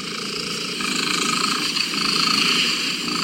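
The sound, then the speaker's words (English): A domestic cat named Bella purrs loudly and steadily during an official Guinness World Records attempt for the loudest purr by a domestic cat, measured at 54.6 decibels; a rumbling, rhythmically pulsing drone that carries on without pause, with no voices present. “This is an official attempt for the loudest purr by a domestic cat.”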